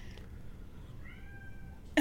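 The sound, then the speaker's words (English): One of four household cats with the morning zoomies lets out a drawn-out, wavering meow at about 10 o'clock, then a sudden loud, sharp burst cuts in right at the end. No one speaks. “Our cats have the morning zoomies, even though it's 10 o'clock.”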